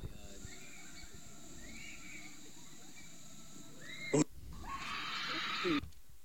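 Steady low snorting and oinking grunts, like a pig-like dog creature, continue for several seconds, then a sharp click leads into a louder, harsher noisy stretch before stopping abruptly.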